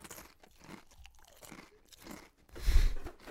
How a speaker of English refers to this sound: Okay. I'm going to eat. That's great audio for the pod.